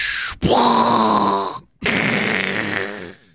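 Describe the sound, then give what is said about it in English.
A storm sound effect: two loud, rough, rumbling bursts of noise with a raspy, growling texture, separated by a brief gap of silence, with no talking. “That was the sound effect. That was now hear this of the storm.”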